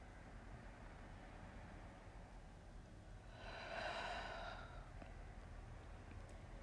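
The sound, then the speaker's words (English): A single slow, deep breath taken to begin a prayer, a soft airy whoosh lasting about a second amid quiet background hiss, with no talking. “Let's begin with a deep breath.”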